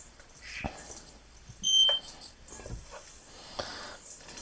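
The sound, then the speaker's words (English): A single short, high-pitched electronic chirp from a smoke alarm signalling that its battery needs changing, sounding once fairly clearly against faint background noise. “Mine's going off because it wants its battery changed.”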